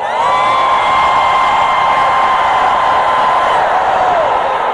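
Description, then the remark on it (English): An audience with hands lifted screams together for about five seconds in a loud, sustained roar, with a high held voice ringing above the wash of noise before it bends downward near the end. “Lift your hands and scream for 5 seconds.”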